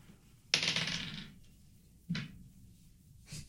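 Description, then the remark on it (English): Dice clatter onto a hard tabletop for an investigation roll in a game, one roll rattling for nearly a second, then a second shorter tumble and a faint third tap. Fairly loud, with no talking. “Anyone who wants to can roll investigation.”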